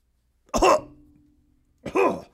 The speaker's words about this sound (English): Herr Akinator begins to cough